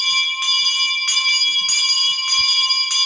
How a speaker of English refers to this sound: We actually had a handheld bell, and if you were lucky, you got to be the bell ringer. I would get picked, and you'd stand in the doorway, hold up this big bell, like one of those ones, you know, for shame.